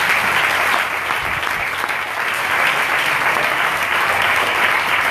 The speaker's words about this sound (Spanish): Aplauda si usted quiere.